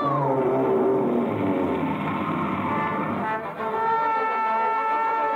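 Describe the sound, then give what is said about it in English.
A giant whale's sneeze erupts as a massive, sustained roaring blast with deep horn-like droning tones, loud throughout, briefly dipping before surging on for about five seconds, with no talking. “I was right outside when that whale sneezed, and that raft shot out like a cannonball.”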